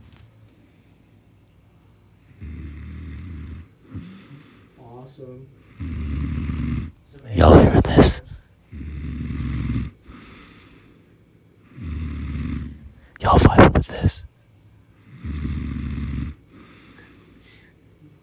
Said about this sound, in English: Oh, he's actually snoring. I hope the podcast captures the snoring.